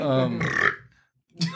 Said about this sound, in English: Yes, …, I'm leaving your burp in.